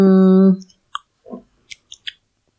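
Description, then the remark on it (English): A loud, held humming tone cuts off, followed by several wet crunching and smacking sounds of someone chewing brownies right up near the mic, spaced irregularly. “If everybody could chew closer to the microphones.”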